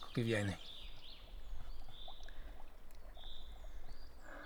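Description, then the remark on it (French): Faint birdsong in a forest of tall red fir trees: a few thin, high whistles come and go over a steady rushing, rustling background with twigs crackling underfoot, after a brief loud tonal call at the very start. “Les brindilles craquent au sol, martèlent un rythme, pendant qu'un chant d'oiseau, un léger bruissement, nous rappelle la hauteur du décor.”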